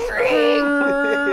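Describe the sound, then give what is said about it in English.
A voice imitates a lounge chair being dragged backwards through a casino by two droids. It makes a sustained, strained groan that rises in pitch and then holds steady, lasting just over a second without any words. “That makes the most terrible dragging noise.”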